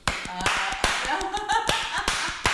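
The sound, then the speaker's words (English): A person slaps their own face, half the face at a time: a steady series of sharp, crisp slaps of a hand, repeating about every half second, with a voice murmuring faintly underneath. “Now, the reason for the slaps, if you do a half the face, you slap half the face at a time, and what happens is your wrinkles and fat will go away.”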